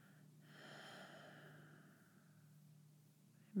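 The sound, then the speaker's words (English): During a guided meditation, a single slow, deep exhale is released softly, trailing off over a few seconds above a faint steady low hum, with no one talking. “Exhale as you waterfall it out, completely turning your gaze inward.”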